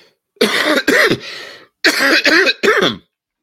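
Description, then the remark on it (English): A person coughs and clears their throat in two bursts, three harsh hacks, a short pause, then three more, loud with no talking. “Excuse me, I wish I had time to edit out the coughs and all the pauses.”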